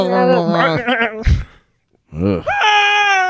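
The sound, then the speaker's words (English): Goats let out loud, wavering, almost human-sounding screams. One long quavering cry breaks off into a brief silence before another shrill, sustained scream follows. “Those fucking screaming goats, man.”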